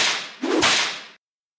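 A single whip crack sound effect: a rising airy whoosh snaps into one sharp, loud crack, then a brief hiss that cuts off abruptly. No voices, just the effect on its own.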